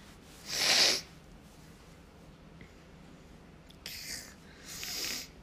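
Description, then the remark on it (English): A sharp, breathy burst like a stifled sneeze from someone unable to sneeze, followed a few seconds later by two softer snorting exhales through the nose, fairly quiet, with no talking. “I can't sneeze.”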